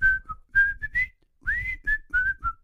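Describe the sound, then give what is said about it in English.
A person whistles a short, lively tune, a run of bright clipped notes with one brief pause midway, alone with no talking. “I'm stunned by that whistling performance.”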